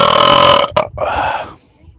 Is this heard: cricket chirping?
no